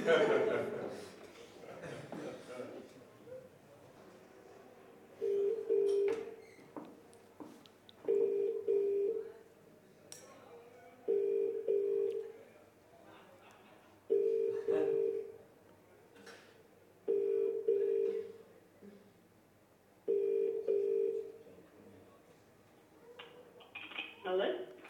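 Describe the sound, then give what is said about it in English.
A phone call dialed on speakerphone: brief clattering and tones, then six evenly spaced ringback tones, each about a second long with pauses between, fairly loud. “Here is my phone. If anybody has my number, do not phone me.”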